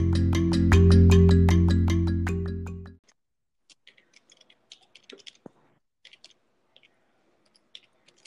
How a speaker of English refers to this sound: I can hear all your typing. I literally just stopped. She was like, oh, he's going to be able to hear me typing. I can't type anymore.